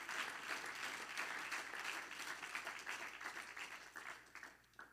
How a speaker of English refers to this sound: Everybody clap your hand again to the Lord.